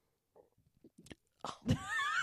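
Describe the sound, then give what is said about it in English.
A few faint mouth clicks lead into a sudden guttural throat burp, a short croaking gulp that trails off into a strained, rising squeaky tone. “That was like a throat burp.”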